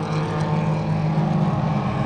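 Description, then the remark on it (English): A dense, steady roar of race car engines as a race restarts after the pace car pulls in, loud and sustained with a low droning hum and no breaks, as several cars rumble together. “All right, pace car's in, so I think we're going to do a restart here, so it's about to get loud, hopefully.”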